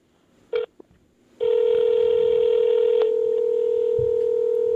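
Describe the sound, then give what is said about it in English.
Telephone tones as a call is placed to Chris Jericho: a single short beep, a pause, then a long, steady electronic tone that holds loud and unbroken to the end, with no talking. “All right, one more call to Chris Jericho, and then we're on our way.”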